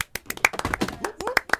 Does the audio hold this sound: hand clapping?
yes